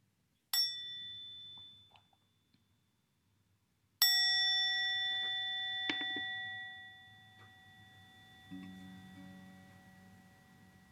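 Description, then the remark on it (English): A mindfulness bell is tapped once lightly, then struck fully a few seconds later, its bright, clear tone ringing out and slowly fading over a soft low background hum. “Shall we listen to a sound of the bell together?”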